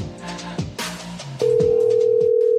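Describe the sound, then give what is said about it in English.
A loud, steady telephone dial tone, from a call to Panini America customer service, starts partway through and holds to the end, droning over a rhythmic musical beat that plays throughout. “Well, a wish is about to come true, so you better fucking pick up the phone with urgency.”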